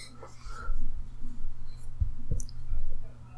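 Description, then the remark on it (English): A few sharp, loud computer keyboard key clacks from someone typing land in quick succession over a steady low hum, with faint, indistinct voices murmuring in the background. “This is a very loud keyboard.”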